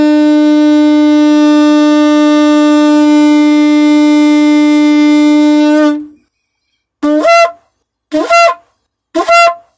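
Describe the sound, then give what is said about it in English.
A shofar sounds one long, steady, brassy blast for about six seconds, then falls silent before three short, rising blasts follow in even succession, loud and unaccompanied. “You can even blow the shofar if you'd like.”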